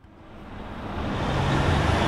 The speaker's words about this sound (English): When trucks rumble through Bayside San Diego neighborhoods, some see economic vitality. But the economic payload comes with a cost that's frequently paid by neighborhoods like Barrio Logan.